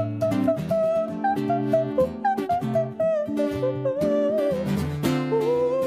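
A duet of two voices sings a song about the plight of the corals in the Red Sea at this year's WEF meeting, in harmony, holding long melodic notes with some vibrato over steady instrumental accompaniment, loud and continuous throughout.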